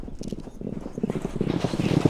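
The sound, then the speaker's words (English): Rapid, rhythmic thudding of polo horses' hooves galloping on turf during a polo game, steady, with indistinct voices in the background. “Polo horses are generally thoroughbreds, retired from the racetrack. On a full gallop, they can reach speeds of over 30 miles an hour.”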